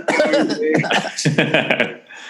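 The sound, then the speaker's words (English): A few short, sharp coughs burst out, mixed in with voiced chuckling and murmuring, the whole exchange lasting a couple of seconds before tailing off quietly. “If I say Asuka, do I hear a no coughing, please.”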